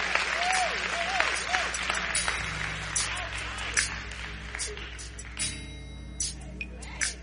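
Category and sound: crowd, audience applause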